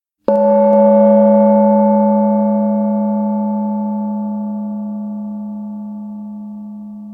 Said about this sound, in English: So the gong is going to sound and we're going to get started. Here we go.